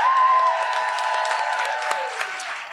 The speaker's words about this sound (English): Let's get a round of applause for my mom.